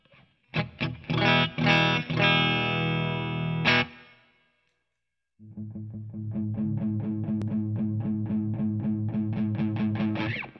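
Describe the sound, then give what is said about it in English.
A bass guitar plays a few thick, sustained notes, then after a short gap returns with a fast, steady run of repeated notes through a gritty Marvellous Engine overdrive pedal, loud and buzzing with no talking. “So here's our dry sound again, and then I'll dial that up.”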